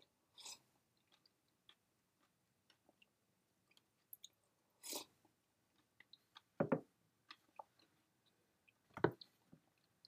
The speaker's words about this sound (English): Oh, it's a good smoothie. Sorry, two more gulps.